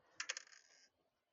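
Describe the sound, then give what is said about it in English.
A small die clatters onto a hard table, rolled to decide how many potions there are: three quick knocks followed by a brief rattling roll that settles after under a second. It is fairly quiet, with no voices. “It looks like they've pulled some recently, but if you want to grab them, I will roll a dice and see how many there are.”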